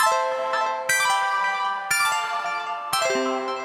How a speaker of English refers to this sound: Right, as chance would have it, my Wendy's arrived just in time for us to put in a chime and go to the next bit. So here we go.